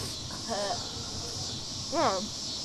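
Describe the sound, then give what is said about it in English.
A steady, high-pitched buzzing drone of cicadas outdoors runs unbroken through the whole stretch, with a couple of brief voice sounds rising over it. “I think it's the cicada, yeah. Cicadas are kind of loud, so hopefully that doesn't sound terrible.”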